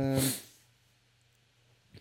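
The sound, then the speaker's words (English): A dog attack: a dog lets out one loud, harsh bark or snarl, followed by a low, steady growl that rumbles on before a brief final yap. “Dog attack. Done that.”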